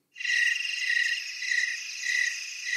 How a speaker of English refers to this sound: Those are crickets, by the way.